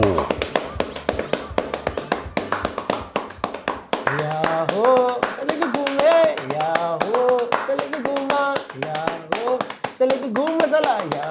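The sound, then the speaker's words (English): An audience claps together in the quick, steady rhythm known as rombo, sharp and fairly loud. A few seconds in, voices rise over the clapping, which keeps driving on beneath them. “But I have to tell you, from what we saw, Salege Guma was less about messages and more about rhythm, especially when it comes time for the audience to join in with the rhythmic clapping known as Rombo.”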